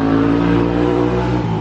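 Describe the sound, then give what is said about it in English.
A motorcycle engine drones loudly as it rides past near a parking lot south of the Greek Theater just after rain, a steady buzzing roar with strong low tones that holds for the whole moment, with no voices. “Motorcycle guy just went by.”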